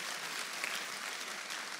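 A crowd claps steadily, a dense, even wash of many hands with no voices rising above it, sustained at a fairly constant level throughout.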